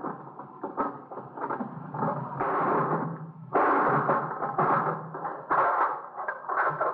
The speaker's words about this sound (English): Do you know where the key is for the lock? No. Guess it'd happen. Let me give you that hammer. Yeah. You gonna break the lock? Yeah.